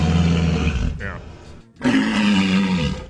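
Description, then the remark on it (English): A walrus mating call: two loud, deep roaring bursts with rough, buzzy harmonics, separated by a brief pause, filling the short recording. “No, that's a walrus noise.”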